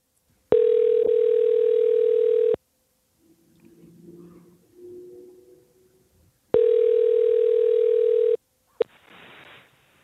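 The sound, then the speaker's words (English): A steady electronic telephone ringback tone from a call placed from a radio studio control room sounds in two long bursts about two seconds each, separated by a quiet gap with faint rustling, then a brief click and hiss as the line connects. “you can get Chinley on the phone for us”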